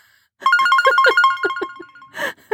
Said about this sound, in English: He gave me one of these cell phones. He's calling. I should probably answer it. Right. If it rings five times, I'm going to catch the whooping of a lifetime.